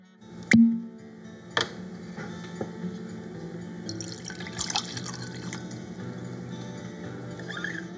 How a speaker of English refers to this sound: I've got a bottle of Glenlivet 18 beside me. I'm going to pour some out